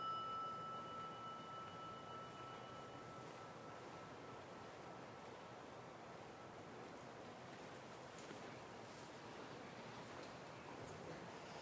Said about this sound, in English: It's nice when the rain comes in just at the right time.